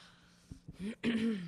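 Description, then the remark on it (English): A man clears his throat: a couple of quick rough catches, then two longer, voiced, gravelly rasps, with no talking. “I'm going to clear my throat for that one.”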